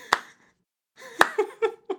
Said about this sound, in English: It doesn't sound quite like a regular clap because I'm wearing the baseball mitt on one hand. Yeah, it's more like a thump, thump, thump.